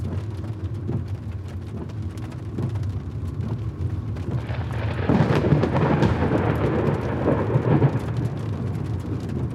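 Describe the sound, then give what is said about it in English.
Steady heavy rain pours down over a deep, continuous low rumble of thunder that swells louder midway, a raging storm in the middle of the wilderness. No voices. “Middle of the wilderness, raging storm, no cell phone service.”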